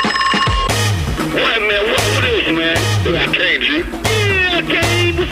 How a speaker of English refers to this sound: Hold on. A phone call.